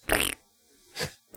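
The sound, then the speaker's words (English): Two short, raspy fart-like bursts, the first buzzing and louder, the second softer about a second later, with the start of a third cut off at the end. No one speaks. “Because if you don't find farts hilarious, you can't be trusted.”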